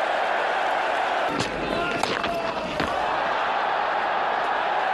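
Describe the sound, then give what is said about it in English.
A big cricket crowd at Lord's roars in a steady, loud wash of cheering as Stokes smashes a ball from Green away to long on and Hazelwood can't stop it, with a few sharp claps and shouts standing out midway through the swell. “Hazelwood comes round, can't stop the ball. Huge cheer for more.”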